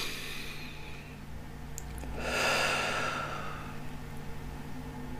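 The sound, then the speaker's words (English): A single slow, deep breath drawn in and released, the airy rush swelling in the middle and fading out, with no talking. “When we're finished, let's take a deep breath.”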